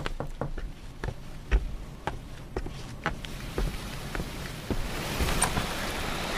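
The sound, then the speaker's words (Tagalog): Steady rain falls, a soft hiss scattered with sharp individual drops tapping a surface, the downpour swelling a bit heavier toward the end. No voices are heard. “Masambasa ka sa ulan.”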